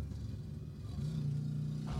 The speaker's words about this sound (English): Listen to how the car changes. Now it sounds like a moped. Now it's loud as fuck again. See, now it sounds like a fucking Hemi from the 70s.